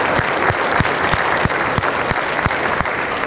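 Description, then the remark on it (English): A steady round of audience applause, dense clapping from many hands at an even loudness throughout, with no voices standing out. “But if you could recognize all of them with a big round of applause, because it really does take a village to make this happen.”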